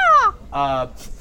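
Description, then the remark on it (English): A person imitates a crow with two loud, nasal "caw" calls in quick succession, the first sliding downward and the second held flat, followed by a faint breathy sound. “everybody's gonna leave the theater being like, caw-caw!”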